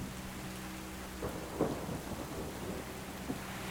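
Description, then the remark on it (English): Steady rain hisses throughout while low thunder rumbles beneath it, swelling briefly in the middle. No voices, just a continuous stormy wash at a moderate, even level. “You listen to the rain, you listen to the thunder.”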